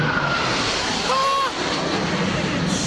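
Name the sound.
airplane flying low overhead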